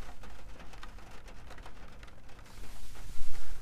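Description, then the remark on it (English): Steady rain patters on a roof, recorded with a microphone held up to the roof: a dense hiss of drops with scattered sharper taps, growing louder and heavier toward the end. No voices are heard. “Listen to the rain. I'm going to put the mic up to the roof.”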